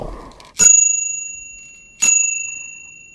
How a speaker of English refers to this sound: This is a beautiful G&J Light Roadster from 1899. It has a very sweet little bell on it too,